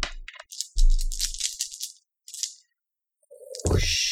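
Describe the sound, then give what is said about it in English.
Five dice rattle and clatter in bursts of bright, clicking noise, with several hard knocks as they tumble and settle, followed by a final louder clatter. No one speaks. “That would be 4 dice plus 1, right? 5 dice altogether.”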